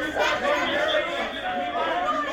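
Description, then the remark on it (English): A crowd of people gathered around Lindsey, chattering at once, many overlapping voices blending into a steady, continuous murmur with no single voice standing out, holding an even loudness throughout. “So everybody listening, there's a crowd of people around Lindsey.”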